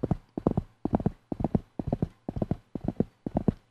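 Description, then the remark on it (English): Galloping horse hooves beat in a quick, steady rhythm of repeated clusters, about eight strides in under four seconds, fairly loud with no voices; the horse, whipped by its rider, speeds up. “And it started to gallop faster.”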